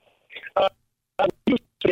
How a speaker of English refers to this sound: We're getting every other word of you. Sometimes if we reset our phone, it gets better.